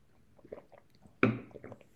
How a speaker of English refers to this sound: Sip of tea. Tea time, everyone.